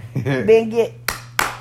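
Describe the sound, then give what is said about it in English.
A voice sounds briefly, then two sharp hand claps follow, spaced about a third of a second apart, each a crisp, bright smack that stands out alone after the voice stops. “That's claps.”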